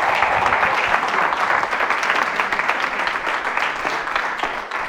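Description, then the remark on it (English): A crowd applauds for the Lord, steadily for the full five seconds, a dense wash of many hands clapping at a constant loud level with no voices standing out. “Give the Lord a clap off him right where you are.”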